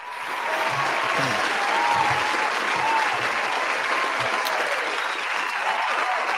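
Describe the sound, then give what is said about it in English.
A sustained round of applause from a sizable crowd, steady and dense clapping filling the whole stretch, with faint murmurs of voices mixed underneath. “Round of applause for this match, man.”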